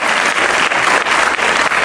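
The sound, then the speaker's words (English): A church audience applauds a visiting pastor and his wife, a steady, dense wash of many hands clapping at once, loud and continuous with no voices standing out above it. “Give these guys a big hand of applause.”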